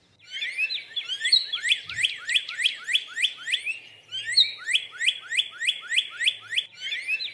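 A North American cardinal sings two quick runs of bright, repeated slurred whistles, each run about nine notes long with a brief pause between them, clear with no voices.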